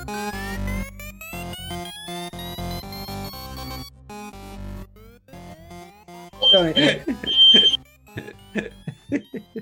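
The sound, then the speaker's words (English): A smoke alarm going off for no apparent reason lets out a couple of short, shrill high-pitched beeps partway through, amid coughing and voices, following a stretch of music. “For some reason, it's just started going off today. The fire alarm.”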